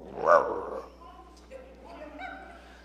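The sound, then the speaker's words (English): A person imitates a dog's growl with a short, loud, throaty snarl at the start, followed by quieter rumbling vocal sounds that fade out over the next couple of seconds. “But you can growl back.”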